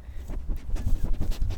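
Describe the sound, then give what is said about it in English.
A dog makes close-up noises right by the microphone: irregular thumps, scuffles and snuffling bursts over about a second and a half, loud and near, with no one talking. “Is that your dog?”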